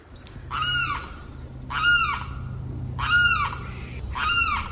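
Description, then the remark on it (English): A limpkin sitting atop a bush at Boyd Hill Nature Preserve in St. Petersburg, Florida, calls loudly, repeating its harsh, wailing cry four times at roughly even intervals over a steady, faint background hum and a thin high tone. “And that is a limpkin sitting atop a bush and making a lot of racket.”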